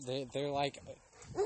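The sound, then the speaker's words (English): A human voice imitates two dogs that live in the same place barking, one at a dog named Ruffy and the other at that dog: two drawn-out, fairly loud woofs in quick succession, then a quieter pause and a shorter bark-like yelp at the end. “And the one dog barks at Ruffy, and then the other dog barks at the other dog for barking at Ruffy.”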